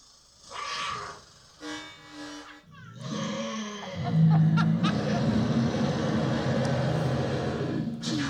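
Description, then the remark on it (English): A comedic 'angry West Hollywood bear' sound effect, played when a comedian goes over their minute: short growling bursts build into a loud, sustained roar mixed with electronic laser zaps and a low droning hum. “You better wrap it up then, or else you're going to bring out the angry West Hollywood bear.”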